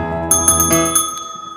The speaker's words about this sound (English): I'm not dinging the bell because I'm Kevin at the Plaza waiting for somebody to check me in.